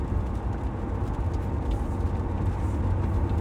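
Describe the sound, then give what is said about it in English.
Steady low rumble of a car interior while driving in traffic to the mall, with constant road and engine drone filling the cabin and no voices or distinct events standing out. “Traffic doesn't seem so bad heading to the mall.”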